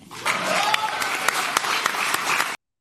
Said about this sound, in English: Yeah, that whooping and cheering are the season ticket holders.